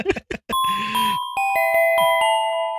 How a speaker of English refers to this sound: I don't know why I did the chime because I felt, but like this is a separate topic, right?